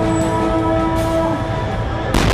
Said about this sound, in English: a call to prayer punctuated by retaliatory explosions. This after a surprise attack on Israel by Hamas today, the militant group firing thousands of rockets into the country, crossing the heavily fortified Gaza border.